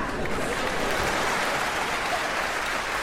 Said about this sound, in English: Then everybody claps, clapping for the orchestra, and they're clapping for Ronan, too. Ronan's wow is everybody's wow now.